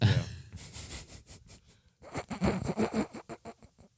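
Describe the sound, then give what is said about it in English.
Breathy exhales and inhales of a man hovering over his microphone, a run of soft airy puffs with a few muffled vocal murmurs mixed in, recurring in an uneven rhythm. “All you're going to hear is him breathing the whole time.”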